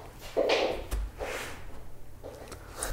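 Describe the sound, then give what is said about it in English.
A door at home swings shut with a brief swishing rush and a sharp click-thud, followed by a few softer rustling bumps; no one speaks. “Don't slam the door, please.”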